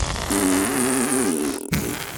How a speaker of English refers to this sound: Before anyone could act, though, every person, horse, and cat let out a considerable fart.